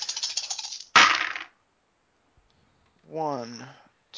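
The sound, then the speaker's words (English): A dry rattle of dice shaken in a cup or hand, then a sharp clatter as they spill onto a hard table, followed by a pause and a brief voice. “So 4, 8, 9 dice for throwing the dagger.”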